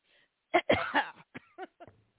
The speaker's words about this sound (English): I can't believe I just came on and just coughed all over the microphone. Thank goodness I'm the only one that uses it.